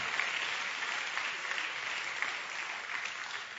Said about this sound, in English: Give me a hand clap right there in Jesus' name.